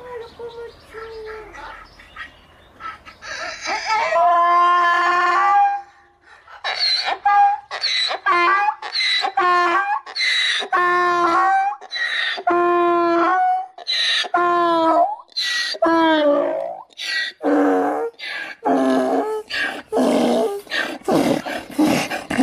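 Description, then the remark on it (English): A donkey (burro), raised from a baby by a little girl, brays loudly and at length on seeing her again after a very long time, a long string of harsh, rhythmic hee-haw calls alternating between higher and lower pitches, with no talking over it. “So, this is a little girl who helped raise this donkey.”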